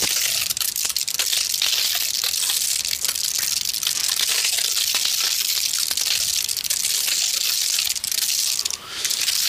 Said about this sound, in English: Okay, so the closest answer I've got so far is oil paper. Oil paper is correct, but it is not being crushed. Okay. So is it food related? It is food related.